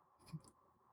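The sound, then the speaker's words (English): A couple of quick, faint clicks close together as someone clicks away on a computer, over a quiet background hum with no talking. “Dean is still just clicking away on his computer. Everyone can hear that.”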